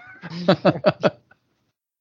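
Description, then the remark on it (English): A human voice playfully imitates a cat's meowing in a quick run of short, nasal, rising syllables, clear, ending abruptly in silence. “Oh, meow, meow.”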